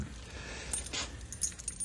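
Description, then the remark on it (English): A small package taken from a desk drawer is unwrapped, with a quick run of crinkling, rustling paper and a few brief sharper rattles over a low background hum, no voices. “Not a very big package at that. Here, I'll open it up.”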